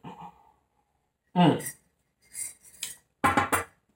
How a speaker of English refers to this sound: And you're debating right now, whoever, and I'm stirring my, for those who are listening to the podcast, I'm stirring my water again. I'm almost finished.